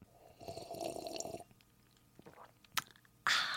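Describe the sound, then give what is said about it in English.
Someone takes a quiet sip of wine, with wet slurping and swallowing mouth sounds, a sharp click near the end, and a sudden burst of rustling noise. “Wait, let me take a sip of wine.”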